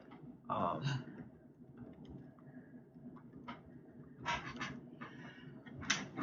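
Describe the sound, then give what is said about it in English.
A single abrupt sneeze bursts out near the start, not loud, followed by a few softer noisy bursts over a low, murmuring background. “Bless you.”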